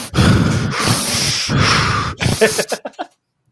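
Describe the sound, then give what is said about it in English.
A voice imitates heavy gasping for air: three loud, breathy inhales and exhales in a row, followed by a few short, fading panting breaths before silence. “That's all that match was, just deep breaths”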